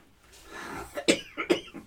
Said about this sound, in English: You fix that cough, though. I wouldn't like to say, this cough's bugging me.